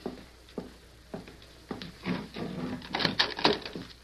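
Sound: door being opened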